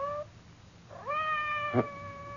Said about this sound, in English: Did you hear anything? Outside the door. It sounded like Madame's cat, Francois.